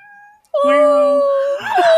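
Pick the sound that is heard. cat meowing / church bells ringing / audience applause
cat meowing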